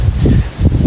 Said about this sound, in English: It's very windy right now.